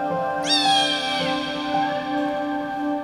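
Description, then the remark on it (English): A cat lets out a long, loud, drawn-out meow, its pitch rising sharply then sliding slowly down, steady and alone without any talking. “I hope that he keeps his cats inside.”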